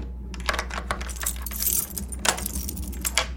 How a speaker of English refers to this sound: Why did you lock the door? I just wanted to make sure we weren't interrupted.